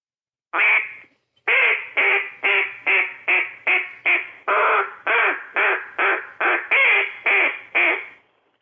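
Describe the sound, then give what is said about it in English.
A hand-held duck call blown in a rapid run of about fourteen loud, raspy quacks, one after another with short gaps, alone, the hand thrown from side to side so it sounds like several ducks calling at once. “And the way you throw your hand from side to side can make it sound like multiple birds.”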